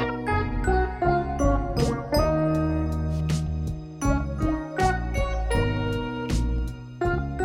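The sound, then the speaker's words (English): A full funk band groove with guitar and clavinet, topped by bright, tinkling bell tones that ring out repeatedly in rhythm above the steady bass and drums; no one speaks. “Add in the guitar, clavinet, and some bell sounds, and the song is starting to sound more like the full song.”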